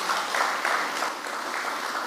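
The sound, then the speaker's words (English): A church audience claps together as a clap offering to the Lord, in sustained, dense applause, a steady wash of overlapping hand claps at an even loudness throughout, with no voices standing out. “Please give the Lord a good clap offering.”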